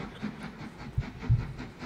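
A train rumbles along the rails with a low, steady roar, broken by a couple of heavy thumps from the wheels passing over track joints. No one speaks.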